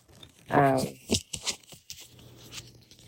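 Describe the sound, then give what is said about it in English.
Playing cards being shuffled in a few short, crisp papery bursts spread over a couple of seconds, following a brief voiced sound near the start. “But we're going to go ahead and start shuffling.”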